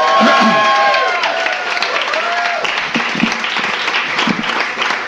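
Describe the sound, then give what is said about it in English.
A crowd bursts into loud, sustained applause with dense clapping, scattered cheers and a few whistles, holding steady for several seconds, applauding a book on its official publication date. “today we should just give a big round of applause because today is the official publication date.”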